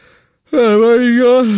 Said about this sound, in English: I'm yawning in the middle of my own scene. That's how boring this is.